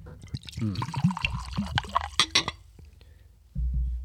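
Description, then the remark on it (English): Rye whiskey glugs and splashes into a glass, with a few light clinks, followed by a short pause and then a low muffled rumble near the end. “I like pouring it. It sounds good when it pours.”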